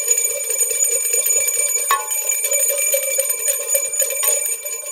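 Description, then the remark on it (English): A bell rings twice, about two seconds apart, each strike clear and ringing out over a steady, bright background hiss. No one speaks. “All right, it's a Two-Bell Tuesday.”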